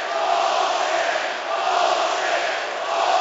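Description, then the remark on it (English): A basketball crowd roars in loud, sustained displeasure at a foul call involving Dwight Howard, a dense wash of many voices holding steady throughout with slight swells and dips, with no distinct speech on top. “This crowd very upset with the call.”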